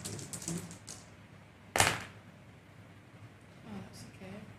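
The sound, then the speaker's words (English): A short, sharp clatter of metal Bizcon dice tumbling across a hard tabletop, loud, with quiet speech murmuring before and after. “I decided to use my lovely metal Bizcon dice today.”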